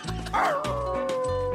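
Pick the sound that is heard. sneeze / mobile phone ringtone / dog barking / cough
dog barking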